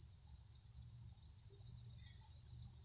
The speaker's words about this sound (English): I can hear the highway, I can hear the cars, but mostly what I hear now is bugs. Listen to these guys singing.